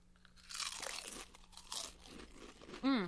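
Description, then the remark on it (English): A green wasabi-flavoured chip is bitten and crunched: a string of crisp, crackly bursts over about two seconds, fading into quieter chewing, then a short loud vocal exclamation at the end. “Okay, I'm opening the wasabi. Okay. What is wasabi? Doesn't smell that spicy. A green chip.”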